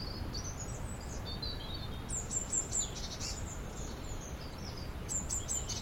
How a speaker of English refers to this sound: That's blue tit. Chattery.